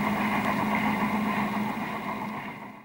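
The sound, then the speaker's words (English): A steam train hauling several carriages rumbles along in a steady, continuous mechanical drone with a low humming tone underneath, holding loud before easing off slightly at the very end. No voices. “A steam train approaches, hauling several carriages.”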